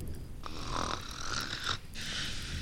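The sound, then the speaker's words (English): Loud, raspy snoring: one long rattling snore followed by the start of another, each breath harsh and throaty, with no talking. “I hum louder because of the snoring.”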